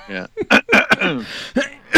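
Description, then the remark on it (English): Someone clears their throat in a series of rough, voiced bursts: a hum-like start, then several short, raspy, fairly loud pulses spread unevenly over about two seconds. “Let me clear my throat.”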